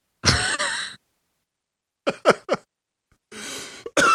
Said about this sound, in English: Oh, excuse me. Why? Because I coughed.